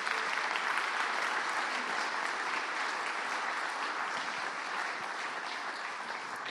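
A church crowd applauds steadily as a candidate is invited up, many hands clapping in a dense, continuous patter that holds at a fairly even level for several seconds without any voices.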